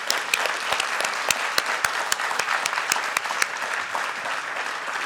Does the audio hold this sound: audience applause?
yes